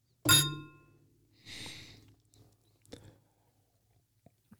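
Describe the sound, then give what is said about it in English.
Glasses clink once in a bright bourbon toast, with a short ringing tone, followed by a soft breathy sip and a few faint clicks. “So, all right, well, let's cheer it. Cheers it up. Bourbon. Cheers.”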